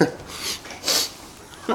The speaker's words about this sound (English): Stop your sniffing, will you?